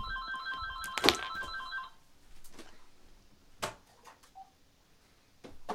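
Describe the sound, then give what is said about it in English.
A house phone rings with a bright electronic trill for about a second, followed by scattered clicks and small handling noises in otherwise quiet surroundings. “hey, there's a phone ringing.”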